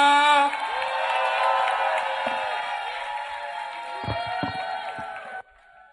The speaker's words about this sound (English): Ladies and gentlemen, put your hands together for a powerful testimony. Now, I'd like you to keep clapping as we welcome